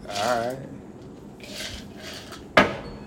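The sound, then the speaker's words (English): Ice rattles and clinks against a glass: a couple of soft, scraping shuffles, then one sharp, bright clink near the end, with murmured voices underneath. “I don't know why you like click click with the glass. I'm trying to get ice from the top.”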